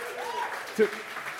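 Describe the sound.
An audience claps steadily throughout as two people are invited to the stage, a dense wash of applause at moderate loudness, with a voice faintly audible over it and a brief louder exclamation near the end.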